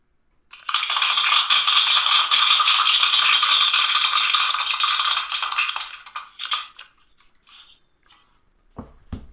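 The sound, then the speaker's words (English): Applause bursts in loudly, a dense steady crackle of many clapping hands for about five seconds, then thins into scattered claps and fades, with no voices. “Yeah, is that applause? That is applause.”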